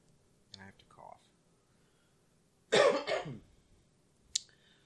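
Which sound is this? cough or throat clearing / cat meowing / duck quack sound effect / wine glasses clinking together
cough or throat clearing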